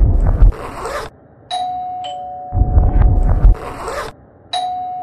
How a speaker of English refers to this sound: there's like blurry, contorted footage of Luigi ringing a doorbell